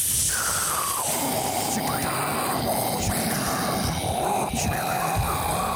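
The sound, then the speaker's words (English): A crackling campfire sound effect: a steady, loud hiss of flames peppered with dense, irregular pops and snaps, running unbroken for several seconds. “That's your campfire noise.”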